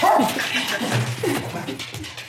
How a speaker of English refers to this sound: dog, Kiku, who was sitting on her lap, just jumped off and ripped the earphones out of her ears